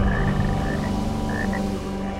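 frogs croaking

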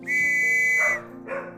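dogs barking

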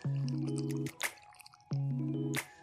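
sipping a drink

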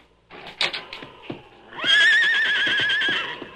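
horse neighing

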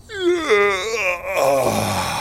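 a loud yawn

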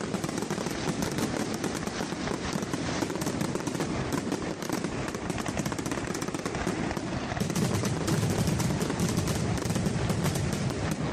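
fireworks exploding

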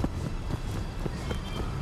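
running footsteps

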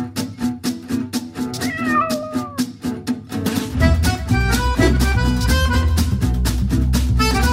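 cat meowing

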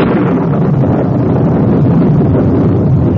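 storm wind

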